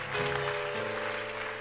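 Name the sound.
clapping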